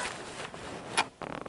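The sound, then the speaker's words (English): Someone blows their nose: a rough, breathy rush of air peaks in one sharp, loud snort, then a brief pause and a short, sputtering, fluttery burst. No talking. “Let me blow my nose.”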